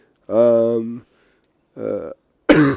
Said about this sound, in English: hopefully I don't go on another coughing spree. I'm so sorry.